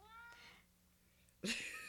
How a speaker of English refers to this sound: Yeah, wait, this cat. Sorry. Oh, my gosh. I put her outside, and she came back.